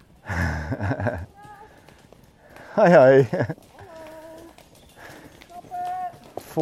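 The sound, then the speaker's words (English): A burst of rapid hoofbeats from two horses galloping at full speed along a dusty road, followed by quieter rustling and snorting as people exchange brief greetings. “ooh, two horses. They're going at full speed, so I'm going to step aside, because this is actually their road.”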